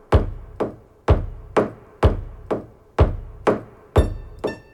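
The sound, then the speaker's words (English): Fingers flick the strings inside a piano in eight sharp, resonant plucks, arranged in strong-then-softer pairs at a steady beat, each ringing briefly before fading; the final plucks sound more clearly pitched. The sound is played live into a looper device, which repeats it. “He's using his finger to flick the strings inside the piano.”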